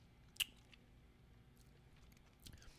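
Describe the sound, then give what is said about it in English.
Someone crunches a hard Mighty Mints breath mint, with one sharp snap near the start, quiet mouth sounds, then a softer burst of chewing near the end. No one speaks. “I'm just swallowing the rest.”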